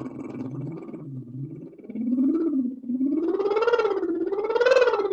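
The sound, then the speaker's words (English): A single voice hums a continuous vocal siren exercise, starting low and gliding gradually up the range in a wavering, rising sweep, growing louder and brighter toward the top of its range. “And you can go up your range or do what's called a siren, which is a fantastic.”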